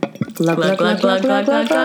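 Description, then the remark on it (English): Rosé wine pouring into a glass for about two seconds, a steady gurgling stream whose hollow, ringing tone shifts upward as the glass fills. “Here's a little bit more rosé.”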